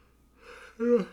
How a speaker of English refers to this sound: Excuse me. Come on. And on that, I was yawning.